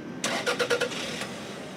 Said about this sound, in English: Most of us who drive probably don't give much thought to turning on our car's ignition. But environmentally, that's where the rubber meets the road.